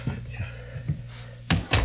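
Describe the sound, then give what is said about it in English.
Two firm knocks on a door land in quick succession near the end, dull and thudding, following a stretch of low hum and a few softer bumps. “Who's at the door?”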